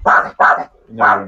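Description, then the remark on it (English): Three loud dog barks in quick succession, with a short pause before the third, each a sharp burst with a harsh, full-bodied tone. “Alright, hush dog. I don't care if there's a squirrel out there, okay?”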